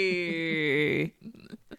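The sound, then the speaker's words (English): A person imitates a pig with one long, nasal, squealing oink lasting about a second, loud, followed by a few softer, broken vocal sounds. “Pigs in space? It's always pigs in space when I do that.”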